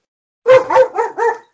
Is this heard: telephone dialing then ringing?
no